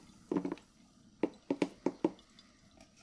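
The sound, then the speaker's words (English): Boiling water poured onto coffee grounds in a plunger coffee press meets the grounds with a series of wet, bubbling pops and gurgles, about six distinct bursts spaced irregularly, fairly quiet, with no one talking. “The demon's escaping the coffee. It's boiling water.”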